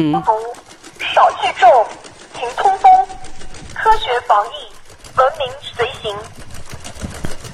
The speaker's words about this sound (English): where someone was recording these like robotic dogs running down the street with a megaphone attached to its back, playing a message to tell everyone to stay inside. Listen to this. And you can hear the robotic dog walking like the ch-ch-ch-ch-ch-ch.